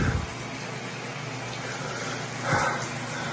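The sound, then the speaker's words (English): A shower runs in a bathroom with a steady, continuous hiss of falling water, swelling briefly louder for a moment near the end. “He's got the shower running and he's crying and he's screaming.”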